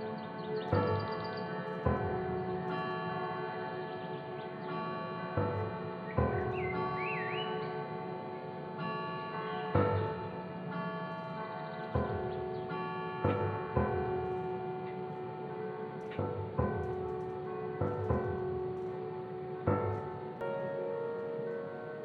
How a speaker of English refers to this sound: And now, as we walk toward the house, we can hear the clock chime that was always there, marking time in the family's life.